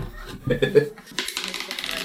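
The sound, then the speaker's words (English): Dice being rolled: a few sharp clacks, then a steady rattling clatter as they tumble across a hard surface for about a second. “You haven't rolled those dice yet.”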